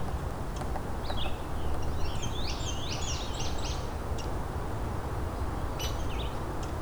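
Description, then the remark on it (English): A scarlet tanager sings a run of hoarse, burry phrases in quick succession over a steady rushing background noise, with a couple of fainter notes near the end. “And a scarlet tanager.”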